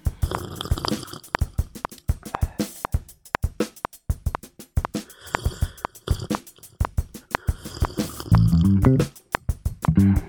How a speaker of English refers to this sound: You know, just me sipping on my green tea.